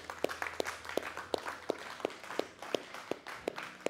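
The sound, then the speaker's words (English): A crowd claps steadily, with sharp, evenly spaced beats standing out over a dense wash of scattered hand claps; no one speaks. “Y'all clapping like God's good and it's Independence Day weekend or something.”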